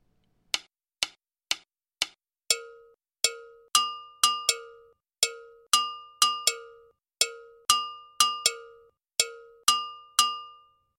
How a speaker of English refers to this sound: The students originally had the drum parts enter first, but I like the layers created by the timeline instruments first. The gongkogwi establishes part of the timeline.